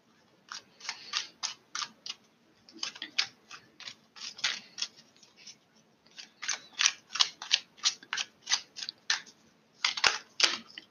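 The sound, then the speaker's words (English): A deck of tarot cards being shuffled, a rapid run of crisp flicking and riffling bursts in several rounds with brief pauses between, no talking. “Let me shuffle a few more cards.”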